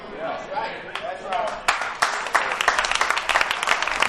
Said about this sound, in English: Oh, the hand claps stand out on that.